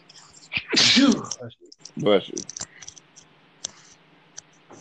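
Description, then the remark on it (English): A loud sneeze bursts out near the start, followed by a second softer sneeze-like burst, then a few faint clicks and ticks. “Bless you.”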